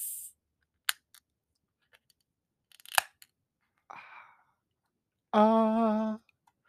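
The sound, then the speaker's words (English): A can of Enchantment Space Dragon IPA beer cracks open with sharp metallic clicks and a brief burst of fizz, with scattered faint clicks around it and a short hummed vocal tone afterward. “I'm gonna open this chela right now and watch. You're gonna hear it pop open.”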